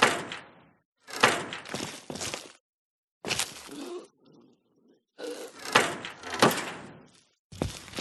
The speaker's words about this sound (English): Oh, there's another cell door, cage door.